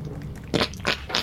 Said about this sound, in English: Stop drinking on the mic. You gonna drink my soda? My motherfucking face? Hella gulp. Hella gulp.